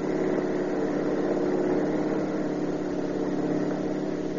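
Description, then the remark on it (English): A car engine roars steadily at high speed during a chase at over 70, a continuous droning hum with a low throb that holds at the same loud level throughout, with no voices. “We're doing over 70 and he's walking away from it.”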